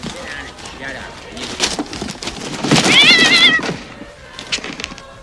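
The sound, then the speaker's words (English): A cat inside a wrapped box gives a couple of soft, short meows, then one longer, louder wavering meow in the middle, with indistinct voices murmuring around it. “This box is meowing.”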